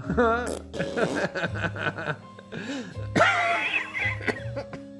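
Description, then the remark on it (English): A fit of harsh, repeated coughing mixed with throat clearing, loud rough bursts coming in uneven clusters over several seconds, with a few strained vocal grunts between them. “Sorry, listeners, for the coughing.”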